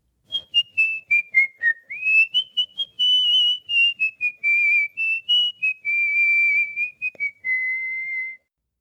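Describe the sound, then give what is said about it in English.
A person whistles a bright, cheerful melody, with quick staccato notes gliding into longer sustained tones, played alone without any talking. “he whistled a happy tune.”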